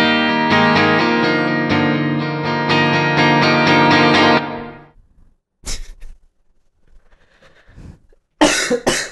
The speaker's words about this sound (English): Just coughing all over the place. That was a weird sound, especially if you couldn't see my face. It was a very weird sound. Yeah, I'm glad I got it on tape.